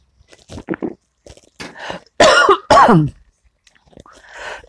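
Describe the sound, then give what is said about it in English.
A burst of harsh, raspy coughing from someone choking on lemon water: a few small throat-clearing sputters, then two loud, forceful coughs in quick succession, trailing off into a softer breathy rasp. “Excuse me, choking on my lemon water.”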